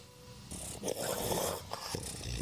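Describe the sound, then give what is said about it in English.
A snub-nosed dog wheezes and snorts with congested, raspy breaths, a steady run of noisy snuffles and rough exhales with no talking. “He struggles to get up, and then... Is he wheezing or breathing? I can never quite tell.”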